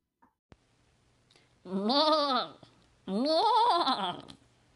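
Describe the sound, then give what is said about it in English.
Two loud goat bleats used as a segment jingle, each about a second long with a shaky, wavering pitch, separated by a short pause. A faint click comes just before them, and otherwise it is quiet. “Interesting choice. Inspiration Goat.”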